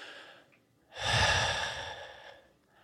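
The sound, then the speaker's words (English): A voice imitates heavy breathing on the back of someone's neck: one long, loud, raspy breath, rising suddenly and fading out over about a second and a half, with quiet breathing before and after. “And whatever it is starts breathing just on the back of my neck.”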